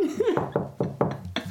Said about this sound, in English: And that's how it works. Enough with the knocking. I don't know how that's going to turn out through the microphone. Probably very poor.